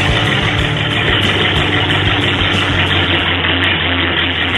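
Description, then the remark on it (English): A car engine idles loudly at a demolition derby, a steady rough rumble with a deep low throb and gritty mechanical rattle that holds constant throughout, with no voices. “This car that made this sound...”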